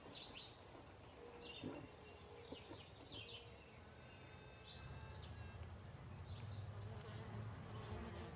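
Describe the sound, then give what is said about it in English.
A bee buzzes in flight with a steady low droning hum that grows fuller and louder partway through, while birds chirp and twitter faintly in the background. “Now, take a bee's eye video, flying over the ground.”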